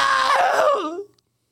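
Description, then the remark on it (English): One loud, shrill scream from a single voice, performed as if by a panicked crowd as lifeless soldiers storm in, holding a high pitch before sliding downward and cutting off after about a second, followed by silence. “It's the same scream as last time.”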